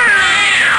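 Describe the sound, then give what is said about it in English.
A single loud, drawn-out cat meow sound effect played from a button, with a bright, nasal tone that bends gradually downward in pitch, with no talking over it. “Jack, hit the meow button.”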